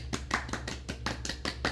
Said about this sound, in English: So tonight being Monday, right after the first round of the FedEx Cup, St. Jude, shout out to the big guy, Will Zalatoris. Will. Round of applause.